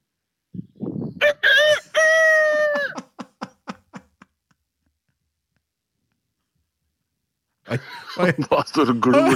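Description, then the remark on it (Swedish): A man's voice mimics a rooster's crow, a rising, sustained harmonic call followed by a series of short clipped notes, then a pause before voices resume. “Ja, det är rooster imitation man.”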